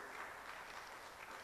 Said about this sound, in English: I thought you would clap your hands for the presence of the Holy Spirit being with you.